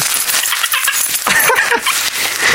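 Keys jangle with bright metallic clinks while a brown paper bag is crumpled alongside, a busy rustling clatter lasting a couple of seconds, with no voices.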